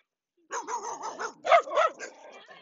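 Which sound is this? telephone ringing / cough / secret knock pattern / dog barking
dog barking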